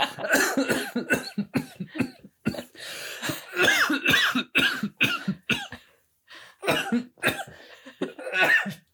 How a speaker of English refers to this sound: I guess I should get that out of the way. First of all, why do you always sneeze after you cough?